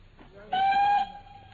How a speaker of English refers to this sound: We get halfway to London, and you suddenly insist on dragging me off the train at this suburban halt and not a refreshment room in sight.